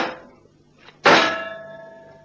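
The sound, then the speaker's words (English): A sealed metal cylinder is struck against a car's jagged fender to punch a small hole in it: a first scraping knock, then one sharp, loud metallic clang whose bright ringing tones linger and fade over about a second, with no voices. “A metal cylinder. Sealed, too. Well, I guess we only need a little hole. That jagged fender on your car will be just the thing.”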